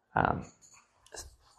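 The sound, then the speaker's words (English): A female dog being lifted onto a couch by her owner: a short, loud, muffled burst, then soft rustling and shuffling bumps in brief bursts, with a voice-like sound at the start. “Sorry, that's me putting up my dog on the couch because she wants to go on the couch.”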